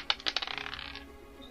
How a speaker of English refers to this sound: Sorry, my dice almost fell off the desk.